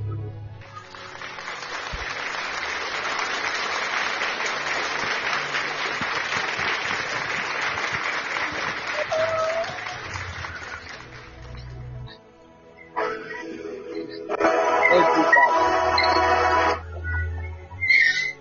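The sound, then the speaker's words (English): An audience claps for Jesus steadily in a dense, sustained wash of applause for about eleven seconds, falls quiet briefly, then breaks into a second, shorter burst of clapping. “Hey, my father will say, clap for Jesus for the prophetic.”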